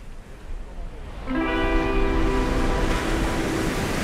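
Steady beach ambience of wind and rolling waves at a beach in Santurce, a constant broad wash of noise. Partway through, a long, steady horn-like tone sounds over it and holds for a couple of seconds.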